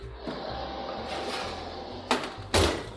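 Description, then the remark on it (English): An oven door opens and a turnip crumble with a breadcrumb, cheese, fennel and orange zest topping is lifted out after its final bake: a steady fan-like hum runs throughout, then two sharp clunks land close together near the end. “Taking it out of the oven, and you can hear it sizzle a little bit, can't you?”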